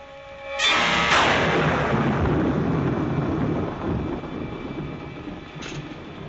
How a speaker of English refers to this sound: Well, another stormy weekend.